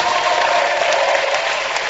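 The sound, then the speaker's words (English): A church audience breaks into steady, dense applause for a preaching bishop, many hands clapping at once in a continuous, fairly loud wash of sound with no voices standing out. “Clap for the mature bishop.”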